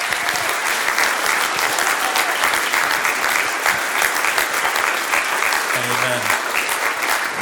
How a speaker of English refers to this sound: I think we should applaud the Lord and give him thanks. Hallelujah.